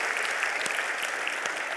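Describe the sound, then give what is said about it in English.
A church audience applauds the Lord during a sermon, a dense wash of many hands clapping at an even, sustained level with no voices standing out, filling the full stretch without pause. “And if you agree with me, give the Lord a round of applause.”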